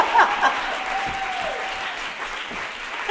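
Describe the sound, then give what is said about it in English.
A room full of people applauding, a dense, steady patter of many hands clapping at once that holds for a few seconds with no voices over it. “Clap me.”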